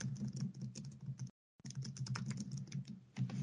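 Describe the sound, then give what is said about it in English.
Rapid, steady, clear clicking of keys on a computer keyboard as a man types a web search about a film scene, with a brief pause in the middle before the typing resumes at the same quick pace. “he's. Typing in Drag Me to Hell, was Christine bad?”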